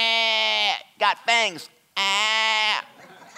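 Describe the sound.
A man's voice mimics a sheep's bleat: a long, quavering, nasal 'baa', then two short bleated syllables, then another long wavering bleat, all loud and alone.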